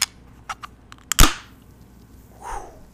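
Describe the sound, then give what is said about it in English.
A light triple tap on a can of pumpkin spice beer, then the sharp crack and burst of hiss as the can opens, trailing off, followed by a softer fizzing swell. No one speaks. “Well, that one is just dying to get out of the can.”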